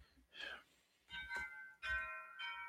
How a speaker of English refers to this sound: What are those chimes going off in your house? Oh, those are wind chimes. I told you the weather's kicking up all of a sudden.